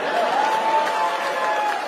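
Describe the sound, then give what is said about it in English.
Scattered clapping from part of an audience, a steady patter blended with crowd noise for about two seconds, with a thin sustained whistle-like tone running through it. “Some people clap.”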